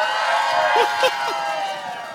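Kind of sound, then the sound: crowd, audience cheering and shouting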